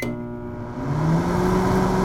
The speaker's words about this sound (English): What do I spy? A microwave!